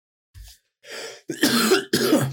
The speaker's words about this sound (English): So that made me cough just thinking about it.